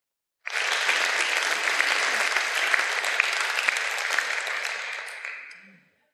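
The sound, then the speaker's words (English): A crowd claps steadily for about five seconds, a dense, even patter of many hands that starts abruptly and tapers off at the end. No one speaks over it. “Can we give those folks a round of applause?”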